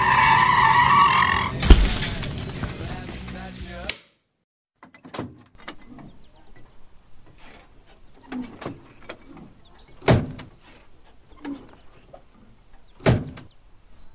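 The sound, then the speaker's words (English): A truck's tires screech loudly in a long skid that ends in a sharp crash as it hits a buck deer, followed by quieter scattered clanks and knocks of debris settling. “Aw, man, your truck ain't pretty no more.”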